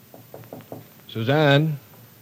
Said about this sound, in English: Oh, she's upstairs in her room or in the nursery. Just knock on the door.